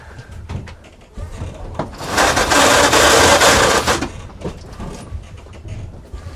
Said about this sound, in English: I think that's just the mainsail being tightened.